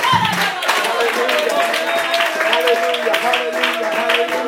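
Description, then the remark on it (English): A church audience claps hands together in a dense, continuous wash of sound during a sermon, with music and voices carrying underneath throughout. “Someone needs to clap their hands on the top.”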